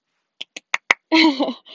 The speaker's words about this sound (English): Claps, thank you, much appreciated.